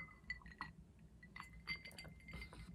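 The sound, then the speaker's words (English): Glasses clink together in a toast, several bright, ringing taps over a low background rumble, with no voices. “Cheers to you.”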